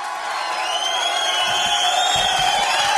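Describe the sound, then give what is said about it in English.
A large crowd cheers and whoops continuously at the opening of a bridge in Hobart, a dense wash of many voices at steady, fairly loud volume with no single speaker standing out. “Keep cheering, suckers.”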